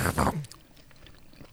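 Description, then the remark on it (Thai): Loud mouth noises of someone lightly biting their own lip into the microphone: a crunchy, wet burst right at the start, then softer smacking clicks and one sharp snap at the end, all pressed against the microphone. “จะเลือดออกวะ กัดจริงไม่ใช่สแตนด์อิน จริงๆอ่ะ เลือดยังไม่ออกครับ มันเสียงอะไรครับอธิบายให้ฟังหน่อย ผมแค่กัดริมฝีปากเล็กน้อย ไอ้แค่แต่เสียงมันเข้าไมค์ดังมากเลย”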